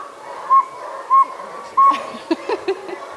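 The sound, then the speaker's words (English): Someone imitates a saw-whet owl with three evenly spaced, clear whistled toots, followed by a few softer, shorter notes. It's moderately loud, with no talking. “Round of applause for all your owl calls.”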